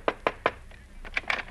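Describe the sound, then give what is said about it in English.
Three quick, evenly spaced, sharp knocks on a senator's wooden door with a Christmas wreath nailed on it, followed by a few fainter rattling clicks of the latch. “Well, let's knock.”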